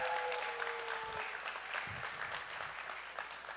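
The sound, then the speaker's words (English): A crowd claps steadily, a dense wash of many hands that stays fairly even in loudness throughout, with a faint tonal hum underneath at the start. “Now y'all can clap for all of them.”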